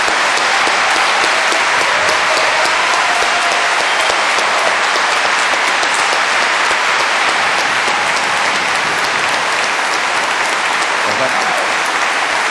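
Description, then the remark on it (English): Sustained audience applause at the close of a debate between Peter and Christopher Hitchens, a dense, steady wash of many hands clapping at constant loudness for the whole stretch, with no voices rising above it. “I told them not to clap.”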